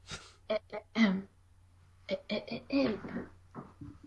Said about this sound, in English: Hold on. Are you choking on something? No, I'm just coughing fakely, like you do when you're about to warm up.